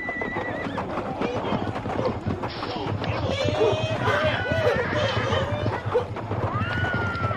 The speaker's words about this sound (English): We didn't say any more after that, because some more cowboys came racing in, their horses covered with lather and dust.